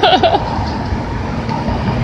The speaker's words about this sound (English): Woo, that was loud, and that was a fast bus. I wish we could have took it.